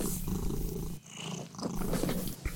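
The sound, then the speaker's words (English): A kitten purrs, a steady rumbling drone that briefly dips between breaths before rolling on again, with no voices present. “our mascot, Scar the kitten. We got a recording of him purring earlier, so we'll insert that here.”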